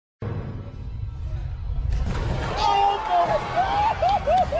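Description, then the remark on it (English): A low murmuring crowd suddenly erupts into loud cheering and shouting about two seconds in, with rising and falling whistles cutting through the sustained roar of an excited movie theater audience as Captain America catches Thor's hammer on screen. “I should have seen it with a group of people, but like, just listen to the fan fucking reaction when Captain America picks up Thor's hammer.”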